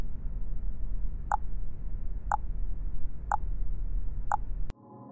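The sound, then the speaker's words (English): A countdown timer for the Time Capsule Countdown, created by the Slumberland Computer Club, ticks four times, one sharp click each second, over a steady low rumbling hum that cuts off abruptly just after the last tick. “This countdown timer was created by the Slumberland Computer Club.”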